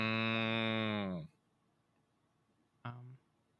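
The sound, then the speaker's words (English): A person imitates a cow with one long, loud, low moo that drops slightly in pitch, followed after a pause by a brief second, shorter moo-like call. “We're running out of content, so we're just doing animal sounds.”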